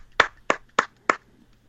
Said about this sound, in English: There's some clapping going on.